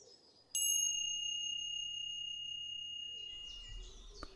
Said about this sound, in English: When you hear a soft bell, start to become very still.